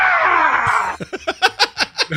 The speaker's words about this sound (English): It's like we almost let's retire the Wilhelm scream and now replace it with the Howard Dean scream.